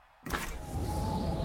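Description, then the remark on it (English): A zip line inside a fridge whirs: after a brief hush, a steady mechanical whirring kicks in abruptly and keeps running, a rushing hum with a faint sustained tone, moderately loud, no voices. “I never knew there was a zip line in my fridge.”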